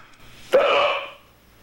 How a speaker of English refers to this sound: Those hiccups. So yeah, that's the hiccup. That's the sound. It's like a robo hiccup. Yeah. It's a robo hiccup. They get louder over time and can go on forever, basically.